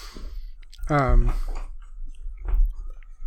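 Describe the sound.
Crunchy chewing of chakri mix, an Indian snack mix of nuts and little crunchy pieces, with a few crisp, irregular crunches and a brief hummed voice sound mixed in, against a quiet background.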